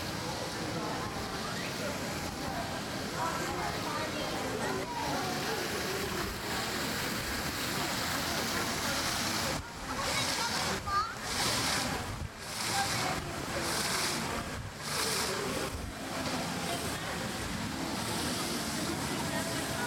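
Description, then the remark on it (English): A fountain with Miss Piggy in front of the Muppet Vision 3D area sprays water in a steady, loud hiss and rush that fills the whole clip. The flow surges and dips unevenly partway through, then settles back to a constant roar. “I'll come up on the fountain with Miss Piggy during circles and spraying out water.”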